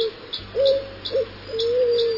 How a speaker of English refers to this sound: That is the growl and bark of the little eared, E-A-R-E-D, eared dove that they hunt down in Argentina.